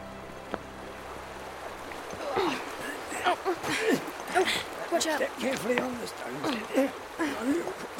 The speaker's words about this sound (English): A river, more like a noisy stream. Right. So, we're on the other side of the Shribble.